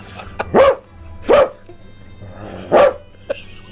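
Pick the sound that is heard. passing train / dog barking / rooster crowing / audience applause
dog barking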